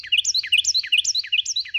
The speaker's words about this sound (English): Wrens aren't the only small birds with big voices, but they are the best known for this ability. How can a bird like a Carolina wren, all of 5.5 inches long and weighing only as much as 4 nickels, produce so much sound?